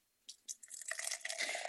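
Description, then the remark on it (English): A very dark beer pours into a glass, opening with a few sharp splashes before settling into a steady, fizzy gurgling stream that grows fuller and louder, forming a brown foamy head with lots of tiny bubbles. Nobody speaks. “Ooh, this is a solid nice pour right there.”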